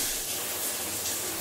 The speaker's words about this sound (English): Ooh, steam. Ooh, hot, hot, hot, hot, hot!